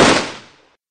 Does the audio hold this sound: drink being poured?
no